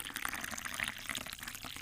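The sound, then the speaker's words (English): CC liquor pours steadily into a glass, a continuous splashing gurgle lasting a couple of seconds with no one speaking. “It's that sweet smell of CC. So let's go ahead and pour this thing up and get this motherfucker started, all right?”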